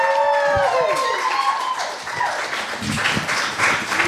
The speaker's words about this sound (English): Keep that applause going for our next poet of the evening